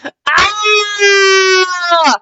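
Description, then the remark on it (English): A drawn-out, high-pitched scream of pain, voiced by a single woman, loud and sustained for about two seconds with a wavering, strained tone. “I started screaming in pain, then growling.”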